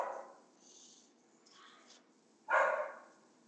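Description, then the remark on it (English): A dog barks twice, a short bark at the start and a louder one near the end, sounding muffled, with quieter rustling in between. “Can you hear my dog barking?”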